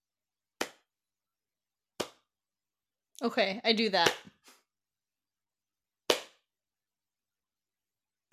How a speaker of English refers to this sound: That's pretty sad. Mm-hmm. It's kind of sarcastic. I'm sarcastically clapping for the tarantula.